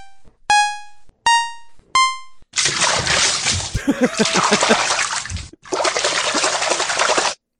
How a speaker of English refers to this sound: Toilet water. It's not like a lake. That's a toilet.